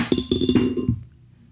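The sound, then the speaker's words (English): Dice rolled for a knowledge religion check in a tabletop game tumble into a dice box with a quick run of bright, clinking knocks, several hits in under a second before the rattle stops and quiet follows, coming up a natural two. No one speaks. “roll me a knowledge religion”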